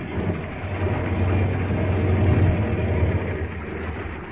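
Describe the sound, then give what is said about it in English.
A seaplane's engine drones loudly and steadily as it comes down onto the water, a continuous rumbling roar with broad rushing noise and no voices. “Well, we land. I'll put the plane down in the water close by.”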